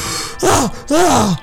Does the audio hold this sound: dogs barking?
no